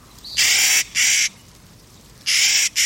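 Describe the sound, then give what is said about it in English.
A Clark's nutcracker, high in the mountains near treeline in the western United States, gives four harsh, grating calls, loud, in two quick pairs separated by a brief pause, with no talking. “High in the mountains near Treeline in the western states, a Clark's nutcracker folds its wings and dives.”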